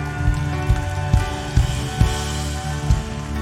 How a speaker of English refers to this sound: Come on, give a God a hand clap of praise.